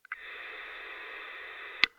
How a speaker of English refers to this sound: scanning through the channels every time I've come back to the car, it's been almost entirely static